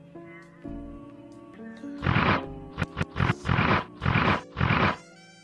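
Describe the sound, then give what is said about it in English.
A rhino grunt sound effect: a series of about five harsh, breathy, rumbling bursts in quick succession, loud and rough, following a steadier low tonal hum, with no talking. “Rhino grunt right there.”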